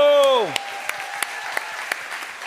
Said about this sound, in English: So. Clap it up, y'all. Let's go!